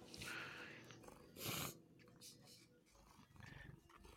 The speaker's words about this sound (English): I can hear the purrs. She's a brat. It's funny because she purrs whenever she does that, but she like doesn't want to admit that she likes it. She like wants to get away.